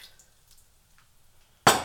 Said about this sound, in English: So all we need is our half a cup of water. Get my half a cup there and pour it in the pan.